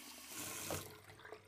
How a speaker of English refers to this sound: Do you see the water running? We better turn this off when we're not using it.